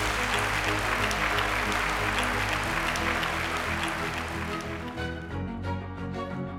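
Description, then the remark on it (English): A large audience applauds steadily for several seconds at the end of an Intelligence Squared debate, recorded live at the IFT First annual event and Food Expo, while music plays underneath; the clapping thins out near the end, leaving the music. “And I want to thank all of you for attending and voting and applauding.”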